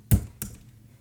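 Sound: typing on a keyboard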